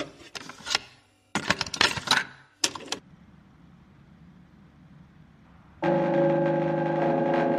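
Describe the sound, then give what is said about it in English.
A distorted airport announcement chime: a few harsh, jangling metallic bursts, a short lull of low hiss, then a loud, steady, buzzy multi-tone drone that holds until the end. “It's like an announcement bing bong, I think.”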